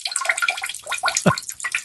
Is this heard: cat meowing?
no